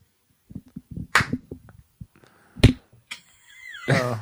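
Two sharp, loud hand claps, made to sync audio before a show starts, ring out about a second and a half apart, with scattered low thumps and murmuring voices around them and a voice rising at the end.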